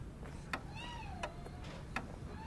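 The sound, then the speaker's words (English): A cat named Yasha gives a single soft, drawn-out meow that slides down in pitch, with sharp ticking clicks at steady intervals and a low rumbling background. “Yasha the cat!”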